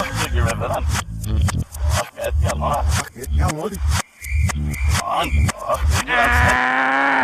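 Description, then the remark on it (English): A voice imitates a manual buzzer played in reverse, with choppy, groaning vocal bursts that build into a loud, sustained buzzy drone at the end. “The sound of the reverse manual buzzer.”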